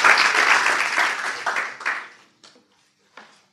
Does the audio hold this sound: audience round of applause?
yes